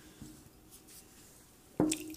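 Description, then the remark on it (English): Someone downs a shot of hard liquor: after near silence, one short, wet gulp and slosh of liquid near the end. “And speaking of that, I okayed a shot whatever the hell he's poured at this point.”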